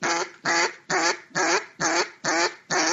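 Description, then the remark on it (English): Imitated mallard duck quacks of an anxious duck about to take flight: a rapid, steady run of seven loud, short nasal bursts in an urgent rhythm, with no talking. “there's a, oh, I'm getting a little anxious and I'm right about to get up and fly quack.”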